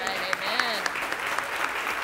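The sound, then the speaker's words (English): An audience claps together for God in a dense, steady burst of applause, with a few sharper individual claps standing out and a raised voice calling over it at the start. “Give God a hand clap.”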